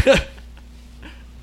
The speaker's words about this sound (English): As you blow your nose.